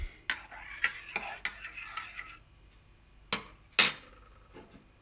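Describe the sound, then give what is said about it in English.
A spoon clinks rhythmically against the inside of a cup while stirring coffee just made with added water, Little Stone coffee from Buenos Aires: a series of bright metallic taps over a soft swishing of liquid, ending with a couple of louder, sharper knocks. “I've just put the water in here. Let's give it a quick stir.”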